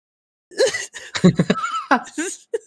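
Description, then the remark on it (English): A person coughs in a quick series of harsh, rough bursts, broken by short voiced, laugh-like sounds, with a final small cough at the end. “just me coughing reminds me of this one time”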